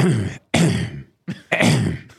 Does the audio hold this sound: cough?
yes